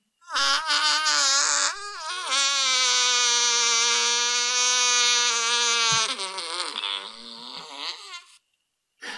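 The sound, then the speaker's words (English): A person demonstrates how they breathe with exaggerated, voiced breathing noises: a short honking burst, then a long, loud, steady groan held for several seconds that wavers and breaks up before stopping. “This is how I breathe.”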